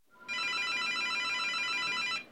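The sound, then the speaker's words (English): A telephone rings with a steady, bright electronic trill, loud, lasting about two seconds with no voices around it, as someone calls to check up on a sick man. “I don't even think he knew that he answered the phone because he didn't make any sense whatsoever.”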